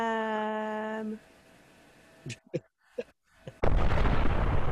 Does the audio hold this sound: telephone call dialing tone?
no